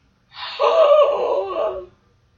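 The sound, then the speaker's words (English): A single drawn-out, open-mouthed yawn, deliberately forced, rising and then tapering off over about a second and a half, voiced, with nothing else around it. “I'm trying to yawn. That's a good yawn.”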